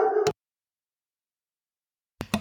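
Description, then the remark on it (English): Dogs bark: a short, sharp bark at the very start, then a long silence before a couple more quick bark-like bursts near the end, moderately loud, with no talking. “Sorry, I think my dogs were trying to talk to your dogs.”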